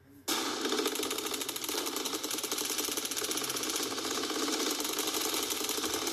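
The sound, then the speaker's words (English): Sustained, rapid-fire gunfire as a sound effect: a loud, steady stream of fast repeating shots that begins abruptly and continues without pause for about six seconds, with no talking. “I don't know why I just played a bunch of gunfire as an introduction to this podcast.”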